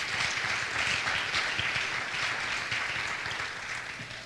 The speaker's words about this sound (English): Clap your hands if you're thankful for that.